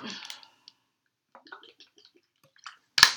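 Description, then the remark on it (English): Someone drinking water: a few quiet wet sips and swallows with small clicks and pauses, ending in a sharp knock like a cup being set down. “Hold on, I'm gonna drink some water.”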